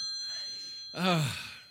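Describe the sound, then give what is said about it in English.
A phone rings with a steady, high electronic tone for about a second, then a low groaning voice cuts in over it as the ringing fades. “answer the phone.”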